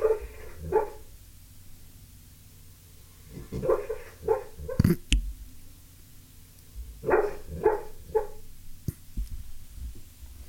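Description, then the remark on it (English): A sleeping dog named O'Neill, dreaming, yelps and whimpers softly in short muffled bursts, clustered in small groups with quiet pauses between, fairly faint, with no talking. “He's doing the little dog. He's doing doggy yelp.”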